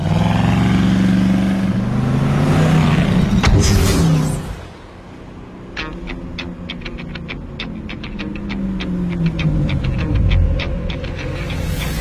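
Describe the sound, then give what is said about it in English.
A Camaro's engine roars and then pulls away, its throaty rumble dropping off; a lower engine drone continues with a scatter of sharp clicking or crackling sounds. “That car is sensitive. I mean, $4,000 just drove off.”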